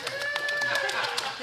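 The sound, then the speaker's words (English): Scattered applause from a small studio audience at an event in Texas, the claps uneven, with a steady whistle-like tone or voice held underneath. “Hot tub applause.”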